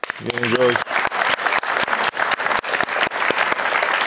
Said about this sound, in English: And for the few of you that didn't, thank you for clapping anyway.